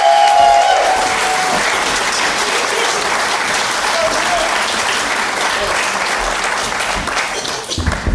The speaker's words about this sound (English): Give a round of applause for my dear friend